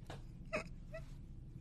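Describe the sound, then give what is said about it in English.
A dog gives two short, high-pitched whimpers, the first slightly louder, separated by a brief pause over a low steady background hum. “And also my dog wants to welcome you as well.”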